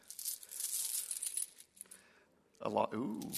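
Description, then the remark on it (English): Metallic jingling of coins spilling and clinking together for over a second, bright, followed by a pause and then a man's voice speaking. “It's like, are those quarters? Are those 50-cent pieces? Pennies?”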